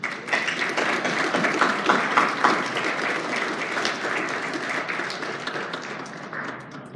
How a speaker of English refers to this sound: I would like for us to give the ladies of the house a hand clap today.